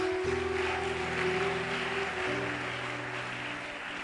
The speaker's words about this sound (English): Clap for Jesus.